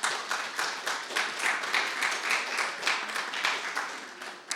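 An audience at a revival service applauds everybody who helped prepare the food, steadily for several seconds, many hands clapping in a dense, even patter at moderate volume that tapers slightly at the end, with no talking over it.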